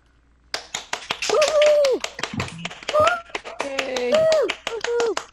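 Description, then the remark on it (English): A scattered round of applause over a video call as participants come off mute to applaud the evening's speakers at a first virtual edition of an event: dense, uneven clapping from several people, mixed with high, sliding whoops and cheering voices that rise and fall throughout. “So I'm now going to ask everybody to come off mute and just give them the round of applause that they absolutely deserve.”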